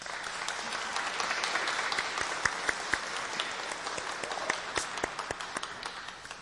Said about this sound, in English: We welcome them with our applause.